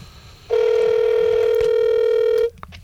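A phone line ringing out as a call is placed during a live on-air show: one loud, steady electronic tone holds for about two seconds, then cuts off, with only faint background noise around it and no one speaking.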